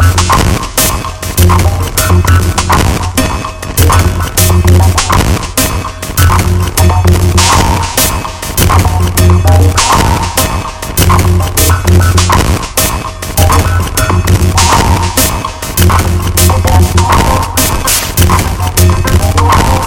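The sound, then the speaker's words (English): A loud, dense electronic tone throbs in a rapid, steady pulse throughout, with a strong low hum underneath and metallic, buzzing overtones, produced by ring modulation of two sine tones. No voices. “For example, ring modulation of two sine tones produces a sound pulse.”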